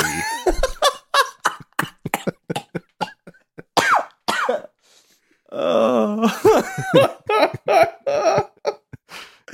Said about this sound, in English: My cough is dry like a big pizza pie